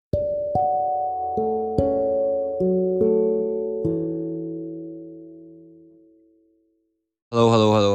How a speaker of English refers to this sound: oh, my God, someone's ringing the bell.